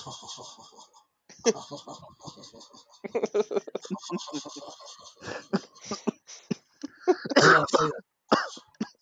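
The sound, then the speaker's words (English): A voice imitates another man's laugh with a string of rough, cough-like bursts and throaty huffs, with short breathy gaps between them and a louder cluster near the end. “It's more like a cough there.”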